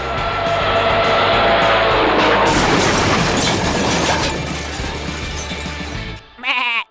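A loud, sustained crash of splintering wood and tumbling debris as someone crashes through a barn roof roars for several seconds, then cuts off, and a single startled animal bleat sounds at the end.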